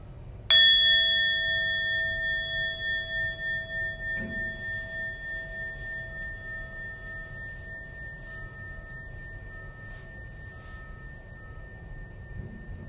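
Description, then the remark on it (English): A single meditation bell is struck once, ringing with clear, steady harmonic tones that shimmer and slowly decay over more than ten seconds, with faint background noise beneath. “So as we sit here and relax, we're going to listen to a few sounds of the bell.”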